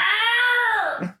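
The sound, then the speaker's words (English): A single drawn-out, high-pitched wailing cry made by a human voice imitating a jungle cat, loud, sliding slightly downward before breaking off abruptly. “You get your kids to record your jungle cat cry.”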